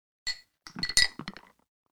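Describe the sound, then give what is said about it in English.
Something is dropped into a drink in a glass with a sharp clink before the drink is chugged, followed by a quick cluster of rattling, ringing clinks as it settles, clear with no voices. “We're going to do the drop sound. Yeah, we're going to drop this in and we're going to chug it, right?”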